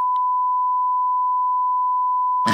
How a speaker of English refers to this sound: No, I'll beep that out.